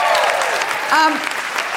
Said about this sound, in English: Big round of applause for Andy Saltzman. Thank you.